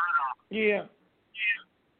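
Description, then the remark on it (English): Tinny, band-limited voice fragments come through a phone left on speaker during a group call, with a doubled, echoing quality, heard as three short bursts separated by brief silences, moderately loud. “There's two of each on the voices.”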